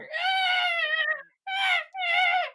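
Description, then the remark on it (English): A voice imitates the shrill, wailing screeches of goblin children dying as their hovel is set on fire: one long, strained shriek followed by two shorter, piercing cries, loud with brief pauses between them. “Alright, so you set this whole thing on fire and you just hear this screeching sound of goblin children dying.”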